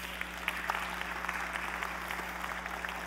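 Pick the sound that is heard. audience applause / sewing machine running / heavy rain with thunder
audience applause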